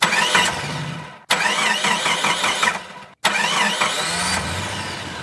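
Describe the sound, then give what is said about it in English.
A car engine cranks and turns over in three loud bursts separated by brief pauses, the motor whirring and rising in pitch with each attempt to start. “John, a car?”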